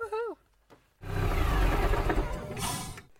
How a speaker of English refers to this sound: We hope you liked our new location with a little bit of ambiance rain on the roof. If you listen to it at night time, you might be put right to sleep.